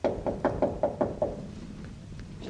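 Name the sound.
knocking on a door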